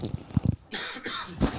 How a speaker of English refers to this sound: Sorry about that, folks. I had to cough.